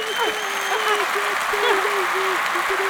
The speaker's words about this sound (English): Should give you a round of applause.